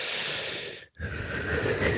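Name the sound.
imitated heavy breathing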